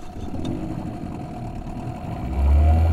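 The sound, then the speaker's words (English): A boat engine starts and rumbles steadily, its low drone building and surging louder near the end as it revs up. No voices are heard. “Engine ready, engine roaring.”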